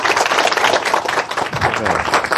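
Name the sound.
audience applause and clapping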